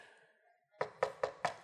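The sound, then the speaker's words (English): Four firm knocks on a neighbor's door in a steady, evenly spaced rhythm, fairly loud, following a brief quiet moment with no talking. “Neighbor answers the door.”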